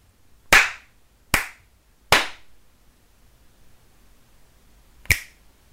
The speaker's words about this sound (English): Three slaps and a snap. That was a confident three slaps and a snap. Yeah, very confident snap. Watch the way he did it. Yeah. He was like very sure of it. Three claps and a snap.